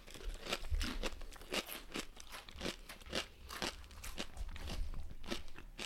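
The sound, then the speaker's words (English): Loud, repeated crunching of a thick kettle potato chip dipped in Bitchin' Sauce being chewed, a rapid series of sharp, crackly bites in an irregular rhythm with no talking. “I'm going to get myself a kettle. I'm going to dip it.”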